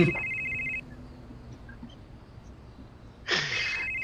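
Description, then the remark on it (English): A phone rings twice with a high, trilling electronic tone, each burst lasting under a second, separated by a pause of quiet background hum. “I'm gonna call Loki's number and see if his phone goes off.”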